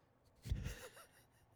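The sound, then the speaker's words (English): A single person yawns from tiredness, a breathy inhalation swelling into a soft, drawn-out voiced exhale that fades away. It is fairly quiet, with no talking. “Could you at least try not to yawn?”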